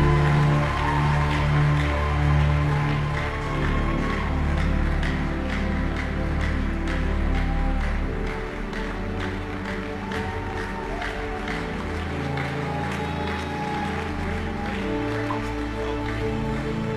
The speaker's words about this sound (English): Give Jesus a big hand clap.